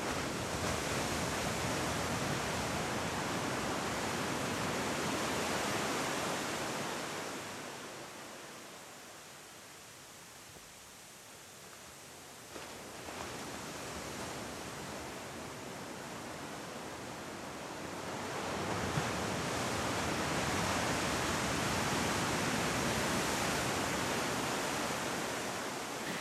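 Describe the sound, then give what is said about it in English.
Ocean surf washes in broad, hissing swells, rising loud, fading to a softer lull midway, then surging back up again, with no voices present. “Really soaking in this ocean vibe.”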